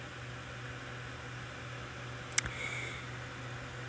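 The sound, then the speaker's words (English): A bedroom fan, facing out into the yard and blowing out the hot air, blows with a steady, even whoosh and a low hum underneath. One brief click sounds partway through, and a faint high tone follows. No one speaks. “the noise you hear is actually my bedroom fan, and it's facing out into the yard.”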